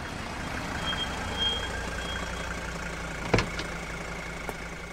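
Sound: car pulling over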